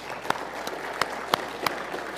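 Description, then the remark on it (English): A crowd applauds steadily as new board and leadership members come up to be prayed for, a dense wash of clapping with a few sharper claps punching through at a regular, rhythmic pace. No one speaks over it. “And can you give them a round of applause while they come?”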